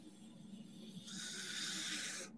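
A long, steady, deep cleansing inhale drawn in through the nose, a breathy hiss that swells louder partway through and holds before cutting off, with no talking.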